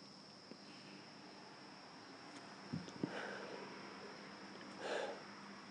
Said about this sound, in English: Just feeling the breeze and listening to the crickets.